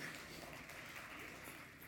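A crowd applauds with dense, steady clapping that holds at an even level for the whole couple of seconds, with no voices standing out.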